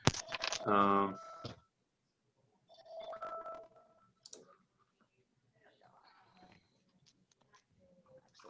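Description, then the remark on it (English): A mobile phone rings loudly with a bright electronic tone, then a second, softer ring follows before things fade to faint background shuffling. “Turn my phone off.”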